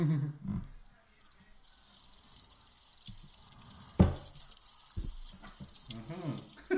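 insect, crickets chirping

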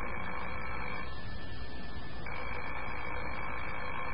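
signal or alarm, telephone ringing

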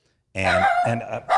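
animal, dog barking

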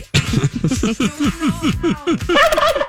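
bird, turkey gobbling

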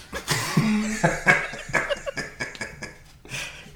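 human body sound, coughing fit

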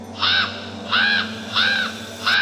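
bird, raven cawing

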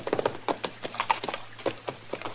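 animal, horse hooves clip-clopping

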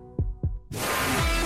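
sound effect, heartbeat sound effect

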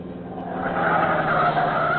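vehicle, car tires squealing

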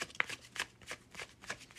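household object, tarot cards being shuffled

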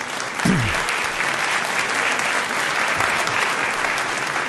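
crowd, audience applause

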